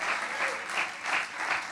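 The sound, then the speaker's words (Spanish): An audience claps steadily as applause to God, a dense wash of many hands with no pauses, swelling slightly in loose pulses. No one speaks over it. “Y si cree eso, denle un aplauso a Dios y crea que la generación que viene es la de los jóvenes de Presencia Viva.”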